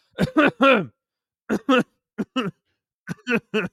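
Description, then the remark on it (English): Someone clears their throat and coughs in short, voiced bursts, grouped in three quick clusters with brief pauses between them, no talking. “Pardon the coughing. I was just clearing my throat.”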